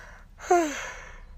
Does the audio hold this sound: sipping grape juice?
no